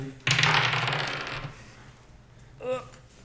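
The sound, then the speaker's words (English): Dice clatter and tumble across a hard tabletop in a bright, rattling burst, rolling a 19, that fades out over about a second, followed by a short murmured vocal sound. “That's a 19 on the dice.”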